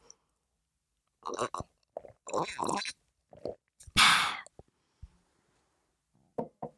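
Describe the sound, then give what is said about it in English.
Mouth sounds of someone drinking: a few wet clicks and sips, then one loud airy slurp, followed by quiet swallowing noises and a couple of small smacks. “One sec, I'm just gonna have a little slurp.”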